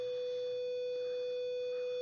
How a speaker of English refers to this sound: I hate that buzzer.